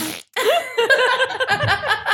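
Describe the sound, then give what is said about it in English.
A voice blows a buzzy, wavering fart noise, a raspberry lasting about two seconds, blending into chuckling laughter after a short pause at the start. “I think that what Benny needs is just a fart noise.”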